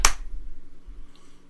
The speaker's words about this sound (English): Oh, can we do a clap real quick? At the start. Let's do a clap, yeah. Right. 3, 2, 1.